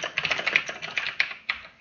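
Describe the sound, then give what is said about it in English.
Rapid computer keyboard typing, a steady stream of light plastic key clicks with a few sharper, louder strikes, with no one talking. “Ah, we're getting some keyboards.”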